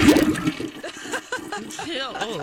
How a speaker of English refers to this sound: I mean, we even flush here on the show.